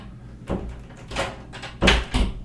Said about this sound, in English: You going to come in or not? You going to stand there? All right, I'm going to close the door again.